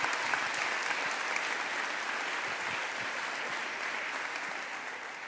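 A church audience applauds steadily for doing household chores, many hands clapping in a dense, even wash of sound that holds its level for several seconds, with no voices heard.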